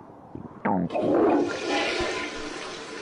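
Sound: toilet flushing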